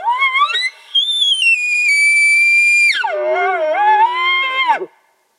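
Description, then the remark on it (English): A single loud elk bugle blown on a bullhorn in a canyon: it climbs into a long, high, sustained whistle, then drops into lower, wavering grunt-like tones before cutting off. “I made some adjustments to my setup location and resumed blowing on the bullhorn.”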